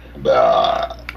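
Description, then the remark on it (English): A single long, loud burp after eating meatloaf rumbles for most of a second, voiced and throaty, followed by a short breathy click as it ends. “Yeah, it is the meatloaf burps.”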